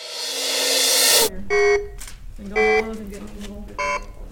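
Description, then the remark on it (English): A harsh, swelling electronic hiss cuts off abruptly, followed by three buzzy, harmonic beeps from toys broken at a workshop in a warehouse, spaced roughly a second apart over a low background hum. “I was there to capture the alien screams of toys broken in the most interesting ways and the minds that broke them.”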